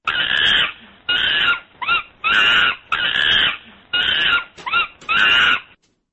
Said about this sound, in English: The monkey's here? You have the monkey? I do have Jojo you have the monkey right here. You have a quote from the monkey? I do. And let's hear it.